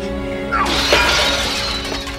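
A sharp judo chop smashes through a glass table, setting off a loud crash of shattering glass that rings and scatters for nearly two seconds over a low steady hum.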